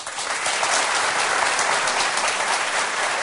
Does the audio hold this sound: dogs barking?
no